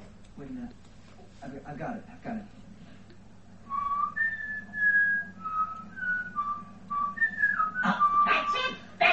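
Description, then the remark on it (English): Someone whistles a short tune of clear, sustained notes that step up and down in pitch, fairly loud, with brief bursts of talking before and after over a low steady hum. “That little thing would have whistled if his big fat fucking lips would let him.”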